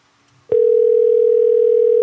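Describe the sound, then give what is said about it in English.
An unanswered phone call: a phone line tone comes in abruptly after a moment of near silence, then holds as a single loud, steady electronic hum without pausing. No one speaks. “all right, we'll try him back later, y'all.”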